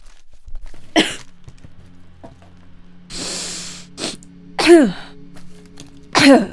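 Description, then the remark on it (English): A few deep sniffs of a cotton pad soaked with a splash of a strong, slightly sweet-smelling liquid, breathy bursts of air spaced over several seconds, some ending in a snort-like voiced exhale; no talking. “Right, so I pour a bit on the pad and I'll take a couple of deep sniffs.”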